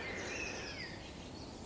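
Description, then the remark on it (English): A treecreeper, among big oaks in grassland beside a bluebell wood in sunshine, calls with thin, very high-pitched drawn-out notes, faint over a steady background hiss, with no voices. “Oh, it's a tree creeper.”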